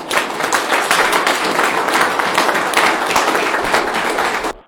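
A crowd applauds steadily, dense overlapping claps at a loud, even level that holds throughout before cutting off abruptly at the end. No one speaks over it.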